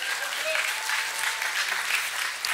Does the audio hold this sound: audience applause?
yes